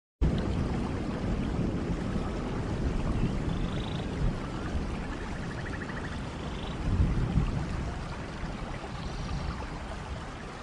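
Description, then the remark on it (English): A steady, dense patter of water droplets falling and splashing, continuing without pause, with a few faint high chirps in the background and no voices. “The sound of water droplets is another ASMR trigger, and the National Sleep Foundation has stated that listening to such audio can help improve one's sleep quality.”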